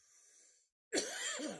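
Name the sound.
coughing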